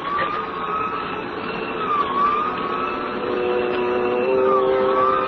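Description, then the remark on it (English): An emergency vehicle siren wails steadily over traffic noise, its pitch sweeping up and down while it stays loud, with no voices. “We both heard the siren then.”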